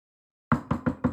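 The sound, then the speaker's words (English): Four quick, firm knocks on a wooden bathroom door after a moment of silence, evenly spaced, with no voices. “Take your knocking away.”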